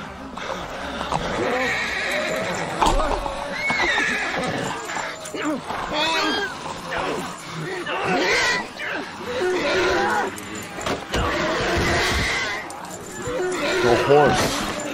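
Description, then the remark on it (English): A horse whinnies and neighs repeatedly in distress as it is devoured in a scene from a television pilot, loud, amid chaos with voices shouting and other animal cries mixed throughout. “They did not like having a horse devoured on television.”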